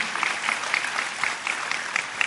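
An audience applauds steadily, a dense patter of many hands clapping at once, sustained at an even, moderate level with no voices standing out above it.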